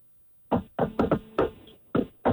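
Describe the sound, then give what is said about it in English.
A friendly, rhythmic knock on a door: seven loud raps in a playful shave-and-a-haircut pattern, with a short pause before the final two knocks. “Yeah, it's a friendly knock. Yeah. It's not a cop knock.”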